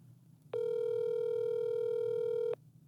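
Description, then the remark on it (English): A single steady electronic ring tone, the ringback of an outgoing phone call to a man, sounds loudly for about two seconds over a low background hum, then stops. No one speaks. “This is, of course, assuming he answers the phone.”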